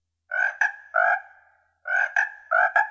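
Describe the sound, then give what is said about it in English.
A voice imitates a frog's croak to say hello in frog, in two bursts, each a pair of throaty, buzzing ribbit-like calls, clear with a short pause between them and no other talking. “Let's see if I remember how to say hello in frog.”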